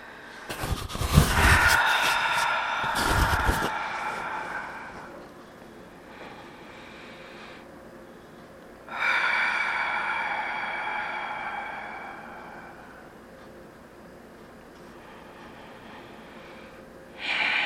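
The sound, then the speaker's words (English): Long, slow, deep breaths taken with eyes closed to center oneself, the first few harsh and noisy, followed by longer, smoother swells of air with quiet pauses between them and no talking. “Nice, long, slow, deep breathing.”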